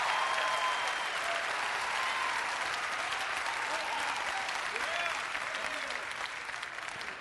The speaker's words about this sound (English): Give the Lord a clap offering and praise Him. Amen.